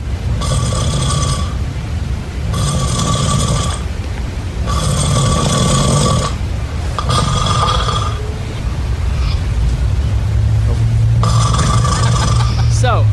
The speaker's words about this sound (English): Here is a clip of Lunchbox snoring as recorded by his wife.